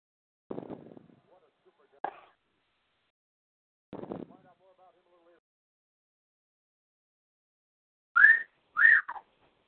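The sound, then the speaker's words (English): A person whistles a short, loud phrase of three or four sliding notes near the end, after some brief vocal sounds and quiet gaps. “I do whistle that at end all the time.”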